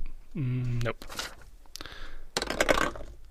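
A short vocal hum, then dice clattering and tumbling across a hard table in a few bursts of quick, rattling clicks, fairly loud.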